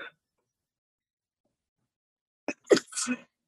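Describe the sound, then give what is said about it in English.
A single sneeze bursts out after a long stretch of silence, a quick catch of breath followed by a sharp, explosive release, fairly loud. “Bless you.”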